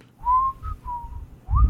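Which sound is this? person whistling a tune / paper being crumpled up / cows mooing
person whistling a tune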